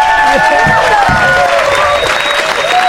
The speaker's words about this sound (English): All right. Thank you very much. Let's have a round of applause for everybody.